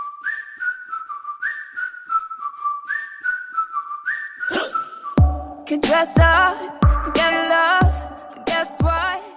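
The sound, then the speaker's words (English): A bright whistled melody repeats a short catchy phrase on its own, then a thumping beat and full pop backing kick in halfway through while the whistling carries on over the music. “This features whistling very prominently.”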